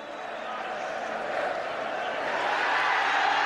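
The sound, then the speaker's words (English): A huge stadium crowd in South Africa, Nelson Mandela among them, cheers South Africa's rugby victory over the 1995 All Blacks, waving a sea of flags, in a dense, continuous roar of many voices that holds steady and swells slightly louder toward the end. “And Nelson Mandela is cheering along with the whole of the stadium.”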